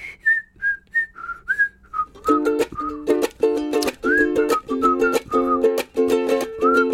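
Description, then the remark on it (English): A bright whistled melody of short, sliding notes, alone at first, then joined by steady rhythmic strummed ukulele chords that carry on beneath the whistling. “One more time, the doo-doos will whistle this time.”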